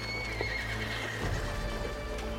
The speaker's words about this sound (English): The animals grow skittish. There are still miles of mudflats ahead. In horror, John sees that the tide is racing in faster than a human runner. His men push their horses as hard as they can, but it's getting deeper.